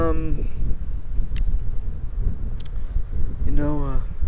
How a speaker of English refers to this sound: Nature's alive. It's kind of windy right now. But actually, I think the sound quality might be better than last time, because last time I didn't windproof the mic, because it was a new mic. I'm still figuring out how to eliminate that noise,